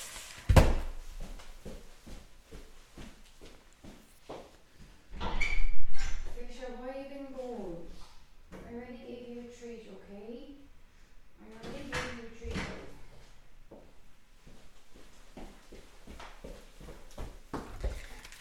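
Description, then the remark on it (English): A door is opened and later closed for someone who keeps scratching at it, with a sharp knock at the start and a louder scrape and clunk midway, while muffled, wavering vocal sounds carry on around it. “I'm sorry, I'm going to have to open the door for her because she's going to keep scratching at the door.”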